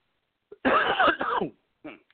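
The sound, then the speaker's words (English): A harsh, drawn-out coughing fit, a long rasping burst with a throat-clearing quality, followed by a shorter cough a moment later. “Wow, this cough is ridiculous.”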